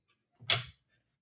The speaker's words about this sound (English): I'm walking out the door now.